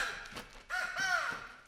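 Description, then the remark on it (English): Crows caw in harsh, raspy calls, a short burst followed by a longer, louder drawn-out caw, with no voices over them. “Your screeching is attracting those crows again. Get away, you birds!”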